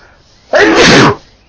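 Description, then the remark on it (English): A single loud sneeze bursts out abruptly, a sharp explosive blast of breath lasting about half a second against a quiet background. “Sorry for the sneeze.”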